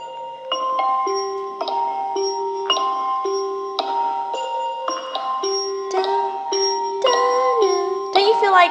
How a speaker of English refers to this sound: There's nothing but silence, and all of a sudden you get these bloody chimes